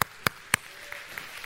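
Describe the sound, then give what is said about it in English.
Applause from an audience at Southcrest for two people called on stage: three sharp, evenly spaced hand claps ring out, followed by a few fainter, scattered claps as it trails off. No one speaks. “Y'all give them a big round of applause.”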